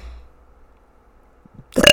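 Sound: burp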